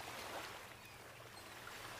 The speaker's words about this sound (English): Now I'm out here with the waves crashing and the gulls.